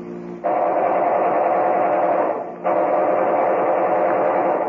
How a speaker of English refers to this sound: I better give them a ruffle with my synchronized machine gun before they shoot away my windshield.